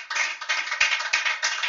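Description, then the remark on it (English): A church audience at a service applauds a visiting pastor steadily, a dense, hissy wash of many hands clapping at once that swells in small surges and holds at a fairly loud level throughout, with no voices. “Can we applaud him?”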